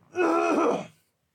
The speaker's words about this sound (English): Sorry, I'm going to cough again.